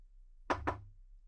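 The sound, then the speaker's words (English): Two quick, sharp knocks in close succession, imitating a duck tapping on a glass back door in the morning, standing alone against a faint low hum with no talking. “I didn't pay much attention to it when I was young until one morning when everybody got woken up by this tapping noise, and it was literally just...”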